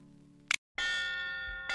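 A sharp metallic clang, a brief silence, then a loud, bright school bell rings steadily and continuously, with no voices present.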